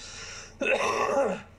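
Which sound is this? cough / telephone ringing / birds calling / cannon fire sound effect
cough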